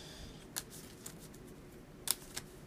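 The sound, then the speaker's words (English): A deck of 20 playing cards is given a quick shuffle at the start of a card game's first turn, heard as a few soft, crisp card snaps and flicks at uneven intervals against a faint low hum, with no voices. “I'll give this a quick shuffle.”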